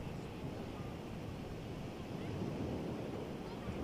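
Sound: ocean waves on beach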